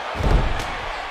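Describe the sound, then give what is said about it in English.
A single heavy, booming slam as a wrestler is hit with a tilted backbreaker and knocked down onto the ring mat, loud, with a steady wash of crowd noise continuing behind it. “Hits him with a tilted world backbreaker. And he knocks him down.”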